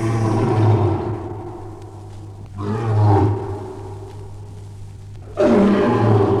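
A lion roars in deep, rumbling bursts, three surges spaced a few seconds apart, loud, over a steady low hum with no talking.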